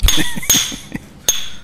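A thick ice cube is smashed with a cocktail muddler: four or five sharp, loud hits at an uneven pace, each with a bright glassy clink that rings briefly. No one speaks.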